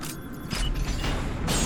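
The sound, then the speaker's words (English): A heavy, giant door groans open with a low, grinding creak, one continuous rumbling sweep that swells louder midway and carries on steadily, alone with no voices. “We've just opened a giant door.”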